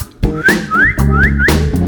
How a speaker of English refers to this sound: Well, I went out my backyard. You know I whistled for my dog.